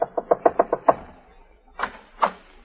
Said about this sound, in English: Now we find her knocking frantically on Jeff's door.